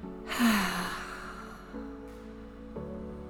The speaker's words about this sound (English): So a big healing breath is when you're taking a big deep breath through the nose, and I want you to fill it up so much that it fills up your chest and then into your belly. And then I just want you to exhale with a big sigh.